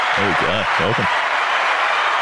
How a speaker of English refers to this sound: Yeah, I've got I had an applause button here somewhere, actually, if you want me to find it. Could take, just give me 15 seconds.